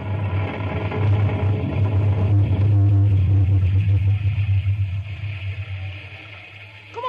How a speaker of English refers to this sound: You can't leave the critters out in a storm like this, Ma.